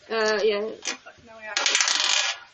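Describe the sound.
A short voice is followed by a fairly loud clatter of a twenty-sided die tumbling and rattling across a tabletop for about a second, rolled for an investigation check in a tabletop game.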